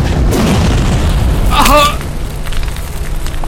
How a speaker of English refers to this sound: you fling forward this blast. This colossal fireball comes outwards.